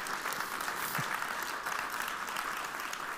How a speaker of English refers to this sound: So, off the top, happy Mother's Day. So for those, oh, sure, it's worth a clap.